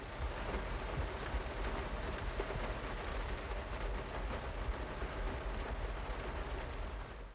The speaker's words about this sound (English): I waited for 20 minutes and the rain's letting up a bit, but it's still raining quite hard. It doesn't look like it's a shower. It looks like it's going to continue to rain.